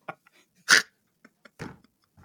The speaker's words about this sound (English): It was me hitting my chair. That's right. That's definitely, that's definitely not a person.